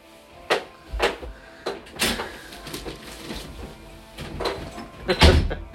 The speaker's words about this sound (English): You didn't close my door all the way.